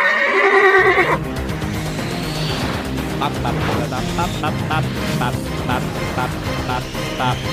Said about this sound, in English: Got a horse.